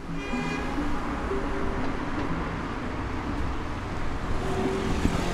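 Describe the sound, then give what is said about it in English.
Steady, dense roar of street traffic rolling past on a London street on a Sunday evening, with a continuous low rumble and engine hum, constant throughout, with no voices. “By Sunday evening, the traffic's back.”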